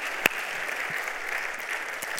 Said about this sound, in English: Come on, give the Lord a round of applause.